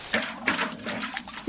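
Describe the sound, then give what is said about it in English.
Water pours and splashes in a steady stream, with a few brighter splashy bursts breaking through the continuous watery rush. “No, not the water again, anything but that!”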